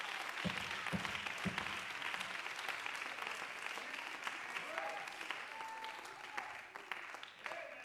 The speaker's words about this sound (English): Woo, come on, let's clap to the Lord for just a minute.